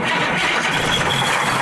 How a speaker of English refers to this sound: The time has come. Start the bus. Start it. You gotta pump the gas. Pump it.